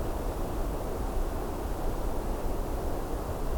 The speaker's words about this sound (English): So because of how quiet it is here, the only background sound is the waves.